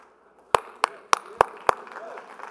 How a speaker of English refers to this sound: Man, y'all making a preacher clap for himself. That is sad. Y'all sad. Bring my own hallelujah to the game.